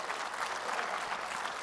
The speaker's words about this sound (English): We're switching from amens to applause, and that's okay. That's pretty creative.